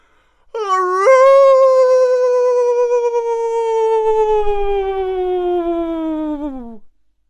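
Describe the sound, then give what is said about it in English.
A single long, mournful, pitiful dog-like howl, voiced by a person as Marlow, a character who has turned into a dog, looking up at the sky; it jumps up in pitch at the start, then slowly sags downward for about six seconds, loud and sustained before fading out. “Oh, no, said Marlow, and then he looked up at the sky of our artificial world and let out the most pitiful howl.”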